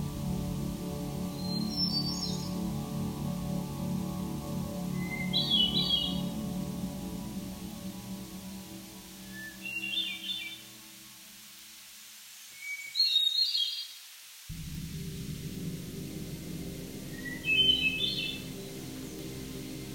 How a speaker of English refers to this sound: The hermit thrush is a forest songbird with a drab brown plumage and a well-known melancholy song.